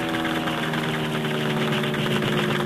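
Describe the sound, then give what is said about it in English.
An airplane engine runs steadily at idle, a loud continuous mechanical drone with a low throbbing hum and a buzzing upper rasp, holding an even level throughout with no voices. “I'll stop the engine while you get into a parachute.”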